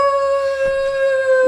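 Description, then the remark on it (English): A person imitates a direwolf howl, holding one loud, steady note for about a second and a half, with nothing else underneath. “and I've started to howl. Oh, I love it. As a direwolf.”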